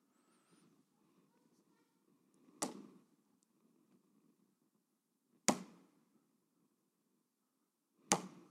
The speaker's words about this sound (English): Now, Jehoash, respond to this good news. Take these arrows in your hand and pound the ground.